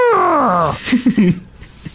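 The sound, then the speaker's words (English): A person vocally imitates the call of a mammoth mount from Conan, as if hit by a train: a loud, harmonic, falling moan lasting under a second, followed by a few short, low grunting bursts. “I thought for a second someone was actually playing Conan. It sounded like a mount.”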